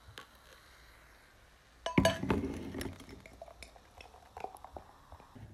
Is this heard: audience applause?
no